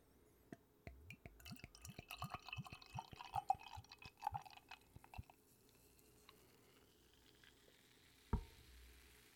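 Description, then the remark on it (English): Beer glugs out in a rapid run of liquid pops and gurgles, then settles into a soft fizzing crackle of bubbles that fades away, ending with a single dull knock. “You can hear the bubbles.”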